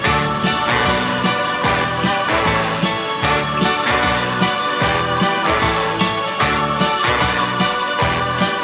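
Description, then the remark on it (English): A loud, upbeat Christmas novelty song plays throughout, with a bouncing bassline, steady driving beat and bright, busy instrumentation filling the mix; no one speaks over it. “Best Christmas song ever.”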